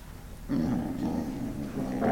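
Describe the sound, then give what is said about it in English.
Four wolves in heat growling: low, rumbling snarls in three sustained bursts over about two seconds, fairly loud and without any talking. “Those wolves are... in heat.”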